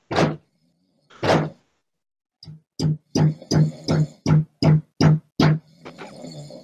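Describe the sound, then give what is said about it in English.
Two slow, heavy knocks on a door, made to get a snoring person inside to answer, a pause, then a rapid, insistent run of about nine loud thumping knocks, with no voices. “I can hear you fucking snoring. Answer the fucking door.”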